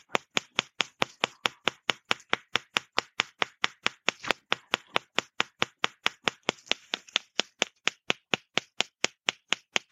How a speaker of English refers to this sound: Okay, coming across the liver, just tapping the liver itself.